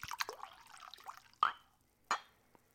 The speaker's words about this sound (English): Despite my negative review of the first few sips, I'm going to pour another glass.